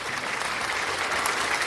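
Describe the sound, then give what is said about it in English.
An audience applauds the Cowboys for finishing out a good season, a dense, steady wash of many hands clapping at even loudness throughout the short stretch, with no voices standing out. “I thought I wasn't going to get the clap.”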